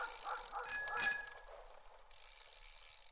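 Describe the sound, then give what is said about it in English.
A bicycle bell rings out with a bright, shimmering metallic tone over the whir of a shiny purple bike being ridden home. The ringing fades, then a steady rolling hiss of tires and clicking mechanism continues alone. “She was so happy that she even began to whistle as she rode her shiny purple bike home.”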